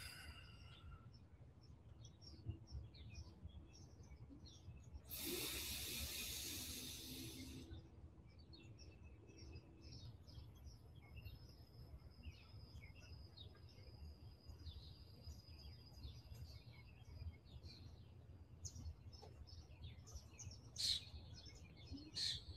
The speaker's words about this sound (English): You might hear the birds, but just take a moment.